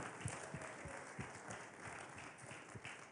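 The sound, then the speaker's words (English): A crowd at Central Christian College of Kansas applauds a visiting speaker for his work this week, a steady wash of many hands clapping at once with no voices on top, fairly loud and continuous for a few seconds. “If we could give him a round of applause for his work this week, we're so thankful for him.”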